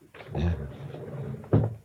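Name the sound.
door opening or closing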